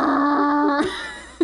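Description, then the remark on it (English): A voice imitates a moped engine with a steady, buzzy, mid-pitched drone that holds for most of a second, then trails away, followed by a short sharp vocal blip. “What are your favorite moped sounds?”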